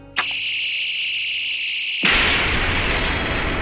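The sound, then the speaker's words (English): A high, steady electronic whine hums for about two seconds, then breaks into a loud, roaring blast that rumbles on: a sci-fi weapon firing and a huge explosion, with no talking. “When he shoots it, we can't give him that. Pretty much like creates a fascinating monster-sized explosion.”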